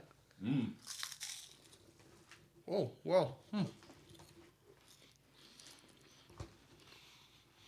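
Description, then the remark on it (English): Crisp crunching of wafer-like snack cookies, with scattered bites and softer chewing in between, while someone murmurs briefly and speaks a few words. “Yeah, we got chewed out because we were too moist with our crunches.”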